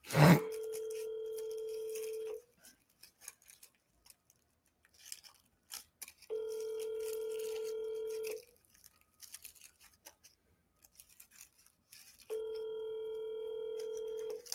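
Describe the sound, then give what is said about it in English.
A phone line rings out while waiting for an answer: three steady, buzzy ringback tones, each about two seconds long, separated by longer silent pauses, with no one speaking. “Pick that shit up, you fat motherfucker.”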